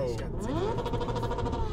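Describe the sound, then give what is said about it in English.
A voice imitates a car or motorcycle engine revving, a buzzy tone sweeping upward and then holding steady for a moment, fairly loud. “Which one? The motorcycle or the car? No, because that's what they do. They'll rev it.”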